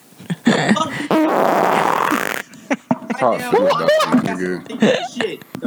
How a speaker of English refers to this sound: I'm about to fart in my mic.